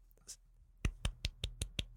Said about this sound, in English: Give them all a golf clap right now for them.